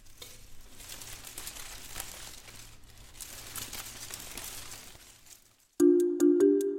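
Dry leaves rustle and crackle steadily at a moderate level for several seconds, then stop abruptly as a loud, bright electronic chime melody takes over at the end.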